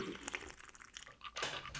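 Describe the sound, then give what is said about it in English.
Slurping sips of a cocktail made with orange juice, lime and ice cubes, mixed with crisp crunchy rattles like ice shifting, in short bursts with a louder one near the end; nobody speaks. “Let's do some sips.”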